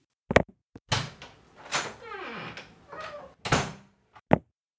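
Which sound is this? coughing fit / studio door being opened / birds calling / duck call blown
studio door being opened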